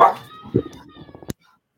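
dogs barking

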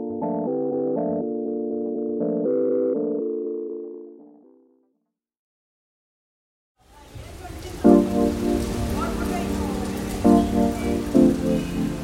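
torrential monsoon rain

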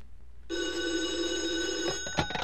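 telephone bell ringing

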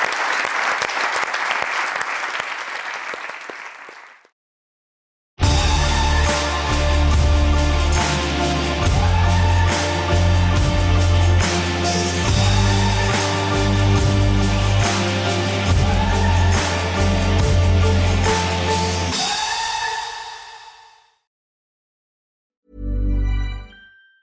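audience applause

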